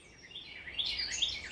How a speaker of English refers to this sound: And then your ear listens to another bird that might be singing a different song. And so your ears tune to these different melodies.